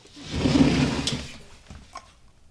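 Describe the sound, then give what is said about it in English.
A shallow drawer of metal printing type in a type cabinet slides open with a rumbling, rattling scrape of loose metal letters, followed by a couple of light clicks as it settles, fairly loud. “We're at a cabinet of shallow drawers filled with metal lettering.”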